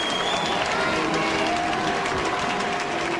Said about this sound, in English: Luciano failed to hit the high notes in the second act of Don Carlos. His voice cracked. The applause you hear is not coming from the Loggianisti. Those temperamental fans who sit in the upper balconies boo.